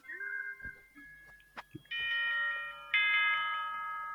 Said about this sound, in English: Wasn't that like of a bell for school? That's our bell.